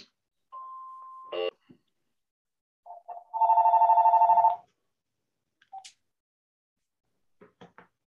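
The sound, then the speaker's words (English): A telephone rings in a single loud, rapidly trilling burst of about a second, preceded by a brief steady tone and a clack, with a few soft clicks afterward and no talking. “I'm actually going to turn this phone off.”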